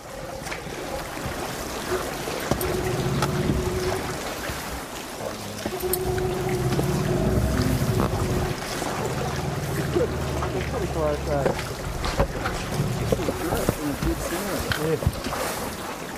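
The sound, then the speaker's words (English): Water laps and sloshes continuously in a hollow, echoing cave inside an iceberg, with a steady low hum running underneath for the whole stretch. “Even the noise of the water was great, hey?”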